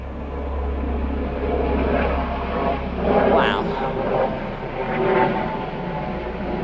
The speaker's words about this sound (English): Let's just wait for the giant plane to go over.